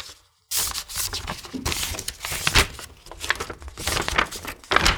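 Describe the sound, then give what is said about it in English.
After a brief silence, a wax seal is carefully broken on a letter and the letter is unfolded: a steady stretch of crisp paper crinkling and rustling with a few louder crackling bursts, no voices. “And she'll carefully unseal the wax seal so she doesn't damage the paper, and we'll open it up and read through what it says.”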